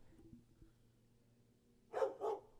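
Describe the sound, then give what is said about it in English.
A dog lets out two quick barks in close succession near the end, moderately loud against a quiet background hum, with no one talking. “So dog. You guys are just going to kind of have to deal with that and, for the next couple minutes.”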